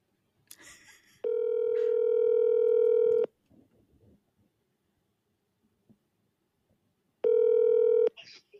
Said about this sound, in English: So in this case of a tie, should we phone call someone real quick and ask them to vote?